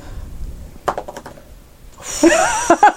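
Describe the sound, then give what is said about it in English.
Dice clatter onto a hard table in a quick burst of sharp clicks, followed by a brighter, louder rattling tumble near the end. No voices are heard. “All right, let's see the dice happen.”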